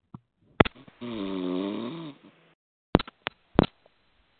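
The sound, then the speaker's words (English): A person on a conference call snores with one long, rattling, droning breath lasting about a second, surrounded by sharp clicks and pops on an otherwise quiet line. No one speaks. “I think somebody's snoring and they need to mute that program.”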